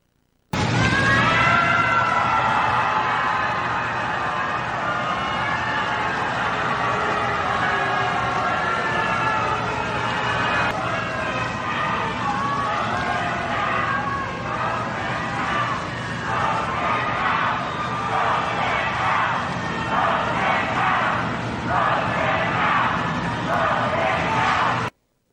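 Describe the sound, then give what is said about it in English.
A large crowd at the Supreme Court building loudly boos and shouts at the arriving US president, then settles into a rhythmic chant of "Vote him out" with regular pulsing bursts toward the end; the noise is dense and continuous. “And he is greeted with the crowd booing him and yelling, "Vote him out."”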